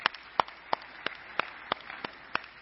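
Applause heard as slow, steady claps, about three per second, each sharp and fairly quiet, evenly spaced with a little murmur between them and no talking.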